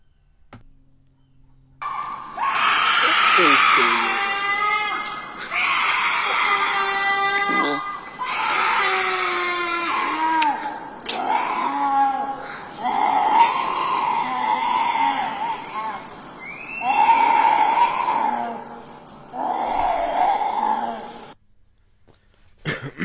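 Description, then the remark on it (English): Eerie, guttural yelling from someone far down a street in Mexico, filmed by a police officer, echoes in a string of drawn-out, wavering cries, one after another for about twenty seconds, with no clear words. “So, because I guess this cop is filming in Mexico from far away, and I guess he could see somebody down the street, and they're yelling like crazy and shit. The yelling is fucking creepy.”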